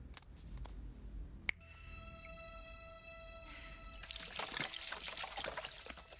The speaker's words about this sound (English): So they're pouring gasoline all the way down the walkway, and then he lights the gasoline